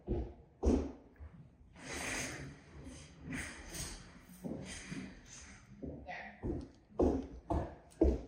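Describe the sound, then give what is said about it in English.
Chairs are pushed in under a table: a few drawn-out scrapes across the floor, then a quick series of wooden knocks and bumps as they settle into place. “I have a thing about chairs looking like they're not tucked in, even though this is.”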